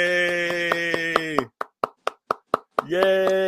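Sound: clapping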